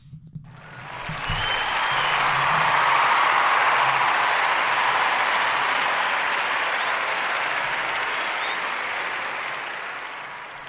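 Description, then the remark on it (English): A burst of canned applause, played from an applause sound-effect button, swells in within a second, holds as a steady, loud wash of clapping and cheering for about eight seconds, then gently tapers off at the end. “Hit that applause button for yourself.”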